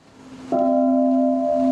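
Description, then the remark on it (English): A single deep bell tolls at an annual ceremony for Confucius's birthday, attended by teachers and students in traditional Chinese garments; after a brief quiet moment its rich humming tone sustains steadily and loudly without fading. No voices are heard. “With the sound of a tolling bell, teachers and students wearing traditional Chinese garments begin an annual ritual”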